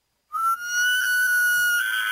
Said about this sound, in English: Okay, shockingly enough, that's an elk. One of their noises. We had Matt on from Alberta Wildlife to explain. Mm-hmm. That's one of the sounds they make.